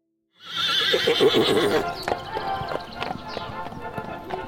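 A horse lets out a loud, shaky whinny that rises and trails off, followed by a scattering of hoof clops and shuffling on a hard surface.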